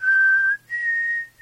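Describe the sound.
A person whistles two sustained, clear notes in quick succession, the second slightly higher, fairly loud with brief gaps between them.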